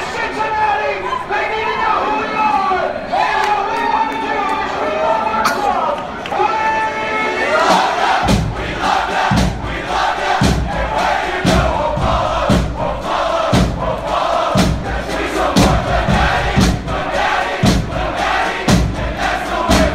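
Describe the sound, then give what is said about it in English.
A loud crowd roars and chants while a man's voice yells over the din. Heavy rhythmic thumps join in about halfway through, pounding steadily beneath the cheering. “Gets me excited, especially when the guy starts yelling at the beginning.”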